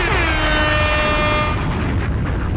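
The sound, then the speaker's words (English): A loud air horn blares one sustained, buzzy blast for about a second and a half, then cuts off into a dense, rumbling wash of noise. No one speaks. “Ring alarm. Give me my horns.”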